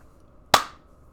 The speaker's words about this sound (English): I'm going to clap again.